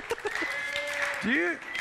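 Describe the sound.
An audience at a morning lesson claps steadily for a couple of seconds, a dense patter of many hands with a few whoops and voices rising over it, moderately loud.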